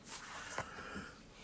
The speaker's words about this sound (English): excuse me. Bless you.